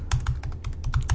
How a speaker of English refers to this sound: You're just going to hear an obnoxious typing.